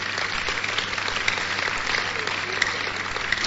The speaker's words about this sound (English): Clap for Jesus.